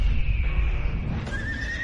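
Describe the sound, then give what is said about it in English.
A horse neighs loudly, a strained, wavering whinny with shifting pitch that fills the moment over a low rumbling background, with no talking. “Something very wrong with that horse.”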